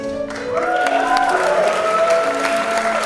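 At an awards event, an audience applauds the presenter of the next award steadily for about three seconds, scattered claps mixed with sustained whoops and cheering voices that rise and glide in pitch.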